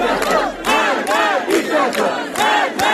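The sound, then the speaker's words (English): A protest crowd in Iran chants "death to the dictator" loudly in unison, many voices shouting the phrase again and again in a steady, driving rhythm, each burst of shouting following quickly on the last. “They're chanting death to the dictator and were met with tear gas and water cannons in what's being called one of Iran's most violent protests.”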